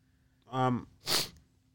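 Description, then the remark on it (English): A single sneeze: a rising, breathy inhale swells into a sharp, noisy burst, then quickly fades to quiet with no talking. “And bless you.”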